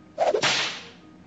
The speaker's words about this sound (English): Okay, he's going to turn around. He's going to try to hit you with the whip.